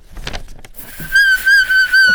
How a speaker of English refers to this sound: That was the squeaking paper. Oh, that's good.